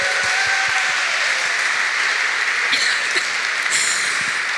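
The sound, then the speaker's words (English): A crowd claps steadily for volunteer actors who performed a Bible story during a service, in a dense, continuous wash of applause, evenly loud throughout with no voices standing out. “Can we give a huge round of applause to our volunteer actors today?”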